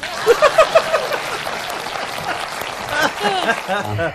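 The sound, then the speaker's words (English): An audience claps in a steady, dense patter for about four seconds, with scattered voices and a few chuckles mixed into the applause. “Please clap.”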